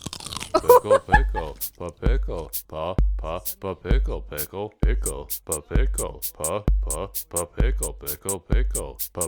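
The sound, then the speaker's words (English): Loud crunching as someone bites into and chews a crisp homemade dill pickle fresh from the garden, wet crunches repeating in a steady rhythm, with some voiced murmuring between bites. “Can you hear the crunch on the thing?”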